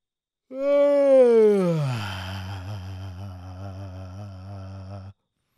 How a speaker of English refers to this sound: We interrupt this podcast with a yawn.